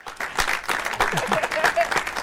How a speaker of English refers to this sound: Oh, you want to give an applause? That was amazing.